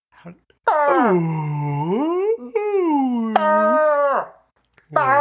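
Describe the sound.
A human voice imitates a long, eerie, spine-tingling crying wail said to come from the forest, sliding down, rising and dipping again in a drawn-out, moaning cry lasting several seconds, with a brief catch midway before trailing off.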